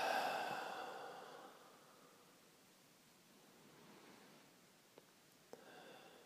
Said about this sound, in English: Taking a few deep breaths in through the nose and out through the mouth. Again, in through the nose and out through the mouth.